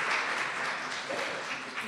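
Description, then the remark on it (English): A steady round of applause from a crowd welcoming a guest, dense overlapping claps forming a continuous bright wash of moderate loudness that holds evenly for about two seconds. “Let's give him a round of applause, okay? There we go.”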